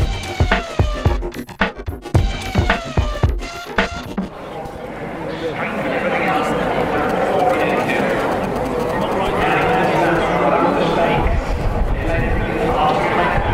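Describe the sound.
A few seconds of choppy, talk-like voices give way to a steady, dense buzz from a crowd of tens of thousands of people in the town of Llandudno during a car rally, while footage is relayed over the PA. Many overlapping voices merge into a continuous loud murmur that holds evenly to the end.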